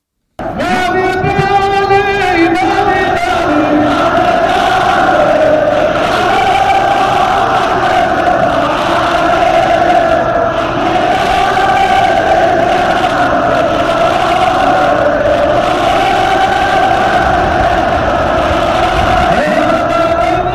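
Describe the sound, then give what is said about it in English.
A huge crowd at a rally in Yemen roars and chants together, many voices merging into one loud, unbroken wall of sound that holds steady for the whole stretch. “Look at that crowd of people.”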